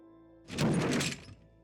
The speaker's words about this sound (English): I heard a loud noise. It sounded like the wheelchair had apparently fallen over.